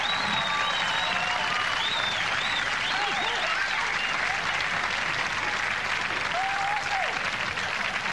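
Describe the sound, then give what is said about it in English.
Loud, sustained crowd applause in a Channel 9 TV clip featuring Ernie and Denise Drysdale, with dense clapping throughout, mixed with cheers and whistles rising above the steady roar of the audience. “I know that was more visual than anything, but it was mainly the quotes and the crowd applause with that too, the shock and Denise Drysdale's quote.”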